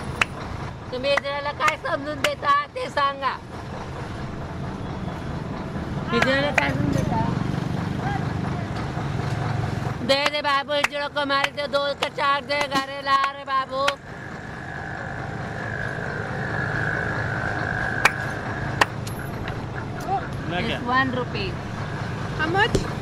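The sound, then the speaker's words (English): A steady low rumble of trucks and traffic on a busy highway, with voices calling out over the engine noise in several bursts and a sustained droning tone partway through. “she went from truck to truck demanding money from the drivers.”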